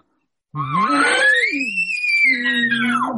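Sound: imitated elk calls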